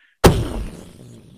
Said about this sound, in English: This massive explosion, as you realize those were thermal detonators. Yeah. Just rips apart a chunk of debris off of the distance.